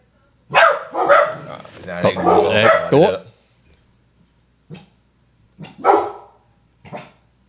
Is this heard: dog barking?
yes